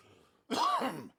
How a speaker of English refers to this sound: I can hear you coughing your lungs out.